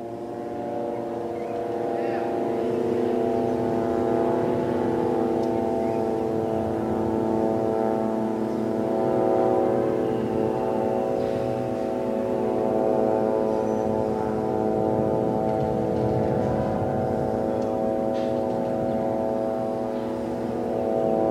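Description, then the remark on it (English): An Israeli military drone buzzes overhead while flying over the Gaza Strip, a steady, droning engine hum thick with layered harmonic tones that holds at an even, fairly loud level for the whole twenty seconds without pause. “This is the sound of an Israeli drone flying over the Gaza Strip.”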